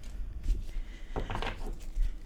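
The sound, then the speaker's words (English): Soft, papery riffling of tarot cards being shuffled, a quiet scuffing that swells into a brief cluster of crisp flutters before trailing off, with no talking. “So sometimes when I shuffle, if you guys aren't familiar with tarot, sometimes cards will just pop right out.”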